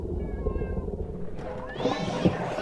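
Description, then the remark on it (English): A barn cat yowls in distress while being attacked, its drawn-out wailing cries rising in pitch and growing louder toward the end, over a steady low rumbling background. “It's attacking your cat, like a coyote or something.”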